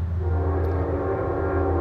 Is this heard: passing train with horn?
yes